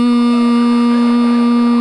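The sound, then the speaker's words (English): A loud, steady drone of eighteen-wheeler tires humming on the road, one unbroken tone with a buzzy edge that holds for the whole stretch, with no voices. “It's a song in your heart, but it's one you can hear too, because them 18 wheels, they're humming.”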